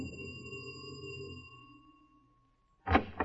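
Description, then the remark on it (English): A doorbell sounds a single bright, ringing tone with a low hum beneath it, fading gradually over about two seconds. After a short silence, a brief loud burst of noise follows. “Ring the doorbell, will you,”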